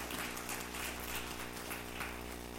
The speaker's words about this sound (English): We can clap to that. That's good.